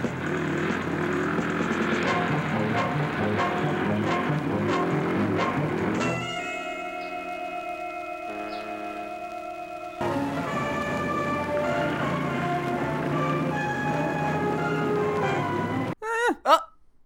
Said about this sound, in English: I've written down that I liked the danger chase music. So I'm sampling this one, I guess. So I'll have a look at that and play it now.